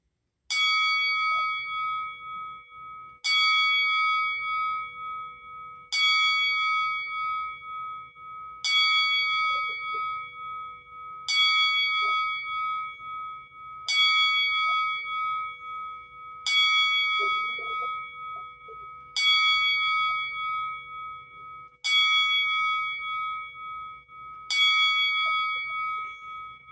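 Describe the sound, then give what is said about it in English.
A single bell is struck ten times at slow, even intervals, about every three seconds, each clear metallic ding ringing out and fading before the next, with faint background noise underneath. It is a ten-bell salute honoring the memory of two wrestlers who have just died. “So right now we're going to honor the memory of those two wrestlers that have just passed with a 10-bell salute.”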